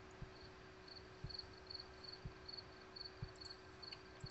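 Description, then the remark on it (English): Faint crickets chirp outside open windows in a steady, repeating pulse with a soft quality, accompanied by occasional low thumps, with no one talking. “And I hear crickets.”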